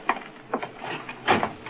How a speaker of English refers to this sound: Karl, open that side door. Ja, Herr von Sturm.